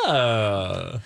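A person lets out a single long, loud yawn, a voiced sigh that starts high and slides steadily down in pitch before trailing off, about a second long with no talking.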